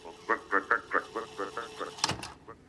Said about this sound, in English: That's not a night parrot. I think it's a grey shrike thrush.